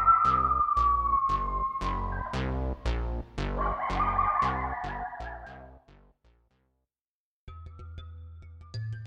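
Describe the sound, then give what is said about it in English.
Coyotes yip and bark in a rapid, rhythmic chorus while higher wavering howls slide downward over them. The loud outburst lasts several seconds, then cuts off into silence. “But this is a nature show, so you're going to get authentic blood-curdling coyote barks, yips, and howls because coyotes are in almost every North American city and suburb now.”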